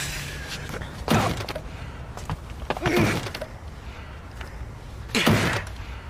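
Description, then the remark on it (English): Someone throws a shoulder against the door of a run-down end house three times, each a heavy thud with a rattle, spaced about two seconds apart, with no talking. “Stand back, I'm going to force this door.”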